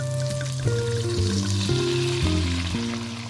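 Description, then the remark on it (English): A steady sizzle of cumin seeds and onion frying in oil in a frying pan over low heat, crackling continuously throughout with low sustained tones shifting in the background and no voices. “Heat 2 tablespoons of the oil in a frying pan over a low heat and scatter in the cumin seeds and the onion and sizzle for 3 to 4 minutes until the onion is starting to soften.”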